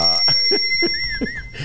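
A small hand bell rings loudly, struck several times in quick succession in a studio, its bright metallic tones sustaining and overlapping throughout.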